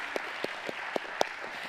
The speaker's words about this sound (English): Would you just help me thank them by giving them just a round of applause? Thank you, ladies.